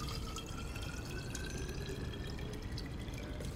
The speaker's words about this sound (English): Then he adds orange juice and shakes the whole mixture up, pouring it back into the bottle.